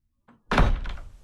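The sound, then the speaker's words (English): A hut door thuds open with a heavy, resonant knock, followed by a short rumbling scrape and then a sharp clunk of a boot hitting the hut's floor, fairly loud. “Jack awoke to the sound of his hut door opening and a horrid and sadly familiar sound of boots clanking against the floor of his hut”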